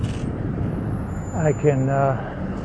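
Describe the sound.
A large truck rumbles with a steady, heavy low-end roar as it crosses a bike path and slows to a stop, blocking the path, while a voice briefly talks over the engine noise.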